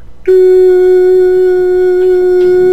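A TV test pattern tone, broadcast before a station went on the air: one loud, unwavering hum at a fixed mid-low pitch with a slightly buzzy edge. It begins abruptly after a brief quiet moment and holds steady to the end.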